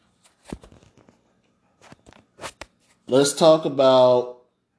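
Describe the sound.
Soft, dry crinkling of a paper towel being used to patch up a blood spot on a person's face comes in a few scattered bursts over the first few seconds, then a person starts speaking as the rustling fades.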